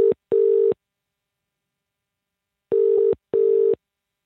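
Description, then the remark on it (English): A telephone ringback tone as a phone call is placed: a steady, fairly loud double ring, pulsing twice in quick succession, pausing about two seconds, then repeating. No one speaks. “I placed this phone call”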